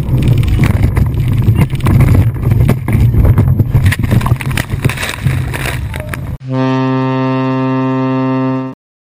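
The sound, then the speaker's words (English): A boat carrying several women has an engine that roars with rough thumping and clattering as it bounces along for several seconds, then a loud, steady horn blast sounds for about two seconds. “And if she did, how would they fare in Rusty's well-driven boat? Well, they would fare about like this, Pablos.”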